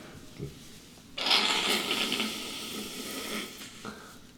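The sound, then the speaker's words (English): Someone blows their nose once, a sustained rough, hissy burst of air lasting about two seconds that starts abruptly and then tapers off, with quiet background before and after. “I had to blow my nose, people.”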